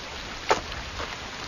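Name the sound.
rain falling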